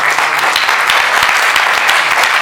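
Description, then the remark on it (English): An audience claps for Jesus during a Christian sermon, a dense, steady wash of many hands from start to finish with no voices standing out. “Clap for Jesus.”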